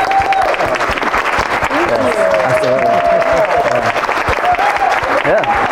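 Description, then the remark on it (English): A crowd breaks into loud, steady applause for this year's Spirit of Inspiration Award winner, a dense wash of clapping that holds for several seconds with a few voices and cheers rising through it. “Big round of applause.”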